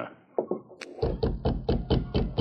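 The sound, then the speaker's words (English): A run of about eight firm knocks on a wooden cabin door, evenly spaced, following a few softer thuds and a brief sharp click. “Who's there? Open the door.”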